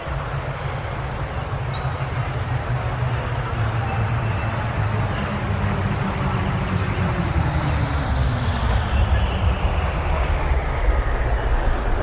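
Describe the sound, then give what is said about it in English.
A transit car travelling from Arcade Station to Cathedral rolls steadily along, its loud, continuous rumble and hiss holding even for the whole stretch, with heavy low-end roar and no voices. “Logan 5 requesting May's car from Arcade Station to Cathedral.”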